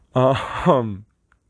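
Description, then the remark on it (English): A single drawn-out voiced yawn, lasting about a second, its pitch sagging and then swelling again before trailing off into silence. “excuse me, I'm yawning. Apparently I'm starting to get tired.”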